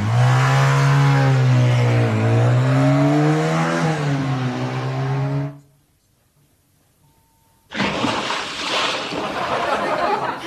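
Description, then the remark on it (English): A motorbike engine revs loudly for about five seconds for a jump over a 20-foot gorge above a 50-foot drop into a torrential river, its droning pitch dipping and rising, then cuts off into silence before a burst of loud rushing, splashing noise. “Well, look out, Evel Knievel, because I'm going to jump on this motorbike over a 20-foot gorge, and if I fail, well, there's a 50-foot drop into a torrential river.”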